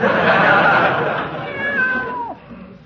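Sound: cat meowing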